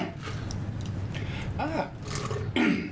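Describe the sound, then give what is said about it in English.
A person clears their throat with a few rough, guttural rasps, the last one the loudest and most drawn out, over a low steady background hum. “clearing my throat, basically.”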